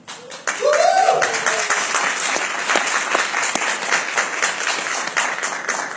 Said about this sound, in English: You're volunteering, if you're on the fund development team, or if you're on the sales team, please stand up. We want to give you guys a round of applause.